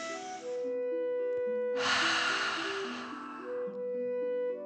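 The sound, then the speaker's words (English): A slow, deep breath in through the nose followed by a longer, louder exhale blown out through the mouth, audible over soft, sustained background music. No one speaks. “Breathing in through your nose and breathing fire out of your mouth. Again, deep breath in and out.”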